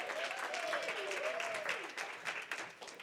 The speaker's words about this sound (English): Y'all know y'all got to keep clapping until they get all the way up here. So there it is. See, that's how you avoid that awkward moment, you know.